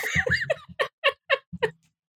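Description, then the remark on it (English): A voice imitates a cat's meow, starting with a drawn-out call and then a quick run of short, rhythmic meows, moderately loud before falling silent. “That's just gonna be like the intro sound for the end of the introduction for all of these.”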